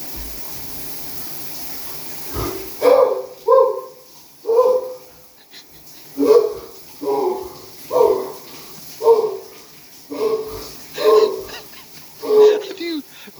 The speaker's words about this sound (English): A dog.